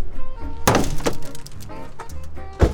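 Heavy blows strike a junked old car's metal body: three loud, sharp whacks spaced unevenly, each leaving a clanging, rattling ring, with softer knocks and a steady tonal hum in between.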